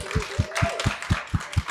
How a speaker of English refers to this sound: So, ladies and gents, before we finish, can we first of all give them a huge round of applause?